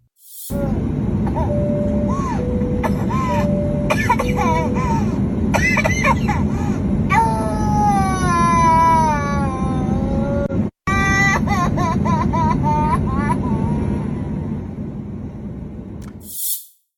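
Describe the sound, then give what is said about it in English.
A young boy on an airplane, reacting to a face mask, gasps for breath between wavering, high-pitched crying and whimpering sounds, with short sharp breathy bursts repeating throughout over a steady background hum. “You can hear him gasping for breath.”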